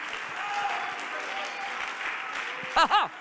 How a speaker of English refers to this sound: Come on, somebody, clap your hands unto the Lord if you believe the word of God.